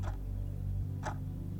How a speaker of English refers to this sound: While watching the swinging, ticking, swaying of the pendulum.